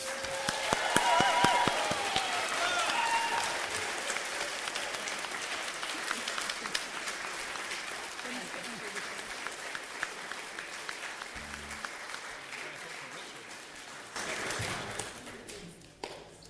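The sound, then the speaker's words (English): A large audience applauds a primary school Christmas production steadily, a dense wash of many hands clapping that holds for the whole stretch, with a few whistles early on and a brief swell near the end before it fades. “That wasn't a very good round of applause. Don't you think they deserve better?”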